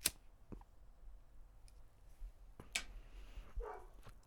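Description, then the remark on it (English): A dog named Fred barks faintly, a few scattered short barks amid quiet clicks and room noise, with no one talking. “Oh, you guys hear Fred barking?”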